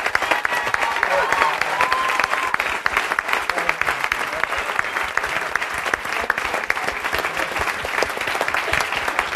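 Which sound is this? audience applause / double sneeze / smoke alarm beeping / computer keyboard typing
audience applause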